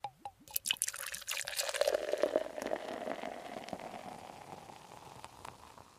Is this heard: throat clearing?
no